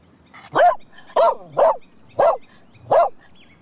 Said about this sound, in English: How many barks was that? It was 5 barks. That's incredible. And of course, he'd written on the board 2 + 3 = and the dog, as you heard, managed to prove his maths was better than mine, at least, which had me amazed.